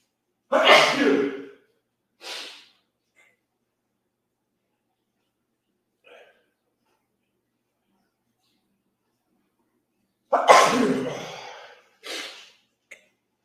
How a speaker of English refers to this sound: I'm going to sneeze. Hang on.